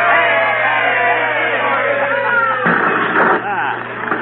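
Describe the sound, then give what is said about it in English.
A crowd cheers and shouts together for about four seconds as a kerosene-soaked fire is lit, a dense, loud wall of overlapping voices that swells slightly near the end before tapering off. “Well, let's have a cheer, folks.”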